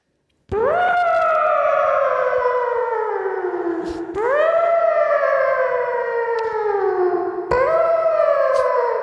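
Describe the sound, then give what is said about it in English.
A voice imitates a tornado warning siren, like in the film Twister, wailing loudly in three long cycles that each rise sharply and then slowly sag in pitch, with no talking over it. “Like it's a siren. Like a tornado. Good. Yeah, like a tornado warning.”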